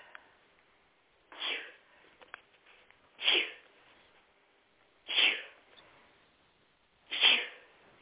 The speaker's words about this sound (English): I don't mind sneezing a little bit when I go outside. My car looks like it has an aura. There's so much pollen on it.